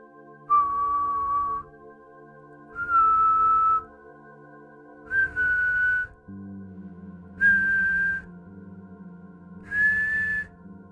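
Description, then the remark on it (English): An eerie whistle, the whistle of El Silbón from folklore and legend, sounds five separate sustained notes, each pitched a little higher than the last, forming a rising scale over a low, steady droning background. “Unlike many stories of folklore and legend, the story of El Silbón is crystal clear on the sound of the whistle. It apparently always resembles the sound of an ascending scale.”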